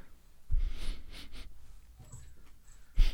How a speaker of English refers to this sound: Sniffing ass on camera. How's that for the algorithm? Smells like mango ass.